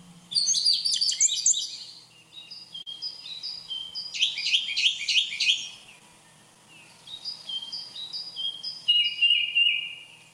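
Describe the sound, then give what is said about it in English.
Several birds chirp and trill in quick, bright bursts outside a house in the city, overlapping calls rising and falling across ten seconds, clear with only a faint low hum underneath and no talking. “That was actually sounds of birds outside my house.”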